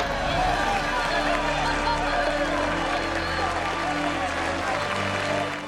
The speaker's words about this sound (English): Did you notice everyone applauded, including the other officers, except for Hanks? Yeah. He was the only one who wasn't applauding.